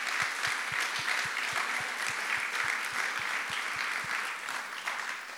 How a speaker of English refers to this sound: Can we just honor them today? Let's give a good hand clap to them.